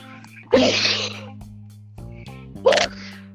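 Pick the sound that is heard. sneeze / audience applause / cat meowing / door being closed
sneeze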